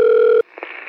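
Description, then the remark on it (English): A steady landline phone tone hums for a moment, then cuts off abruptly into faint line hiss with a couple of soft clicks, as a call is placed to a home landline number. “From interviewing him, it was pretty obvious that he does not have a cell phone, that this number is his home phone, so it's a landline. So I'm hoping if he's not there, at least somebody will pick up.”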